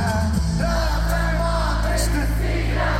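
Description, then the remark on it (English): A huge concert crowd at the 3 Arena sings along loudly in unison, their massed voices swelling and cheering over a steady, low musical drone and drowning out the singer, dense and continuous throughout. “You're probably not going to hear him because the crowd just overtook it.”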